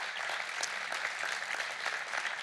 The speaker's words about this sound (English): Hey, give our stage managers a round of applause. They work so hard behind the scenes.